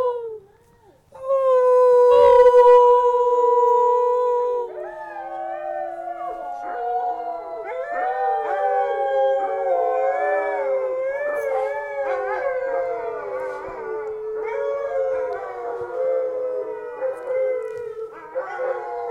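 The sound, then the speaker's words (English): A pack of dogs in a backyard in Fairbanks, Alaska, howls in a loud chorus: one long wavering howl opens, then many voices join, overlapping in sliding pitches that rise and fall continuously to the end. “Usually they howl after dinner, kind of as a thank you, and they haven't just had dinner, so I don't know if they'll howl”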